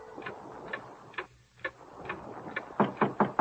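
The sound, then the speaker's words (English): A clock ticks steadily, each sharp tick evenly spaced about half a second apart, with a few slightly louder, quicker ticks at the end over a faint background hum. “Mostly, the man watched the clock.”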